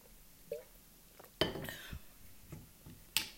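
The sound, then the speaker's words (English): Someone drinks water from a glass: a light tap, then a sharp clink of glass followed by soft gulping sounds, and another bright clink as the glass is set down. “Just a minute, I'm just gonna drink some water.”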